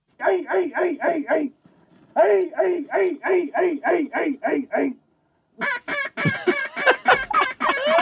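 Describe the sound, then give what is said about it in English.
A man yells a rapid, rhythmic string of short honking calls in three loud bursts, his voice imitating a bird's call to draw it in. “Yeah, play him yelling again.”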